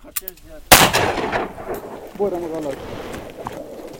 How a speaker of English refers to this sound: And he aims, and he squeezes off a shot.